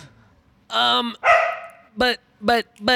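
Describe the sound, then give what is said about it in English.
A human voice imitates a dog barking: two longer, drawn-out woofs followed by three short, sharp barks in quick succession, loud, with no other sound. “You never hear a dog bark.”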